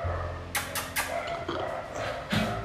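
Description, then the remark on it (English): A dog lets out a handful of sharp, irregular barks, a quick cluster followed by a couple more after short pauses, over a low steady background rumble. “And it's not your dog, bro. Your dog's a good dog.”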